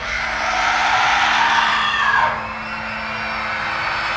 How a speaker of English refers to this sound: It started to become more clear to me. It wasn't a voice, but horrific cries and screams.